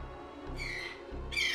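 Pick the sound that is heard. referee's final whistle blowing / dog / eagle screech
eagle screech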